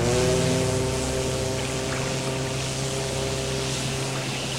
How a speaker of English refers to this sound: And I assume that's our boat out there, fading into the darkness. Hey! Hey, come back!